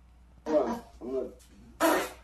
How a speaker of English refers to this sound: And then finally, let's end on a good fart, okay? This woman was stretching with her coach, and she let one rip.